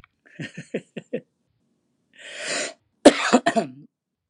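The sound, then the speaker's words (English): Coughing with no one talking: a quick run of five short, rhythmic hacks, a raspy intake of breath, then a couple of louder, harsher coughs to finish. “We have a cough button. I thought I had it. I didn't have it.”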